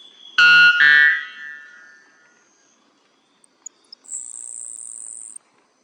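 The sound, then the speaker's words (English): A grasshopper sparrow gives a few faint, ticking chips, then a thin, very high, insect-like buzz lasting over a second. Before it come two loud, harsh, clanging bird notes; a white bellbird is also heard. “grasshopper sparrow and the white bellbird.”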